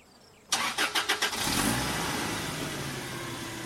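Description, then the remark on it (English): A van engine, hooked up with jumper cables to a Camry, cranks in several quick bursts, then catches and is revved into a loud, steady run. No voices are heard. “Katie revved the van's engine.”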